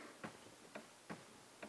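Four steady, evenly spaced ticks from a 130-year-old pendulum clock, crisp, with a quiet background between beats and no voices.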